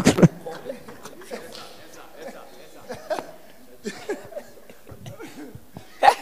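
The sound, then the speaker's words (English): A short, sharp sneeze bursts out near the end, fairly loud, after a stretch of murmured voices and light chuckling, with another abrupt burst right at the start. “Bless you.”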